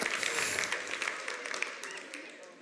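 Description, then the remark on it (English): An audience applauds in a dense patter of many hands clapping at once, gradually thinning and fading over a few seconds. “Okay, so, now you don't have to clap for that.”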